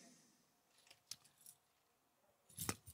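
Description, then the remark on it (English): Car keys jingle softly in a hand, a few light metallic clinks followed by a brighter, fuller jangle near the end, with no talking. “Car keys or this for remote start people. Is this a car key?”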